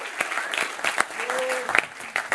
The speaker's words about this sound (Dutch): Short van der Klaai, let's give Short a hand right now. Let's Short een applaus geven.